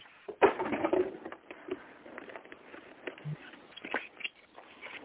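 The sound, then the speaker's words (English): Crisp rustling and rapid papery flutters as a deck of cards is shuffled, a dense burst early on followed by scattered lighter snaps and taps, with no talking. “I am shuffling. I want to get a good one for your birthday.”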